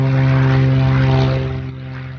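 A propeller airplane drones loudly overhead, its steady engine hum with strong low harmonics fading slightly as it passes. No voices are heard.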